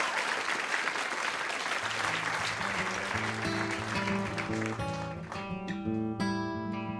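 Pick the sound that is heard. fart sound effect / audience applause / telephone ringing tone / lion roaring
audience applause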